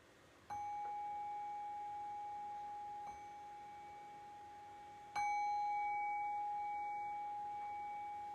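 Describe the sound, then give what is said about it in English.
A meditation bell is struck twice to end a meditation practice, several seconds apart, each strike ringing out in a clear, sustained tone that slowly fades. There is no talking, only quiet background. “I'll ring the bell.”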